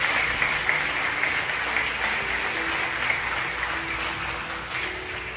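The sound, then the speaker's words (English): A church audience applauds steadily throughout as a hand clap of praise to God, a dense, sustained wash of many hands clapping at once with no pauses, fairly loud. “Can we give God a hand clap of praise?”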